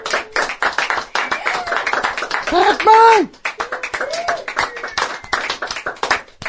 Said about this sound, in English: Yeah, clap.